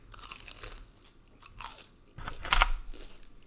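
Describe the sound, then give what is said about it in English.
Crunchy chewing right up close to the microphone, with several irregular bursts of bright, crackling bites and munching, the loudest crunch near the end. “I know, I've been chewing, like, right in front of it, and I'm like, this isn't supposed to be, but you're welcome.”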